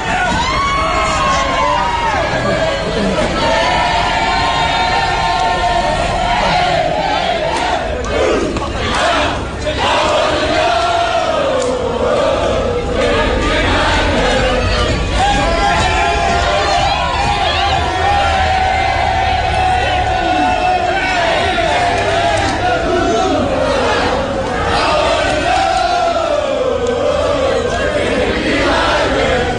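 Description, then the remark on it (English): A rowdy crowd on the main street of Killarney shouts and chants together from Saturday night into Sunday morning, loud, a dense wall of voices that swells with whoops and bellows and never lets up for the whole stretch. “This is the audio of what went on the main street of Killarney Saturday night into Sunday morning.”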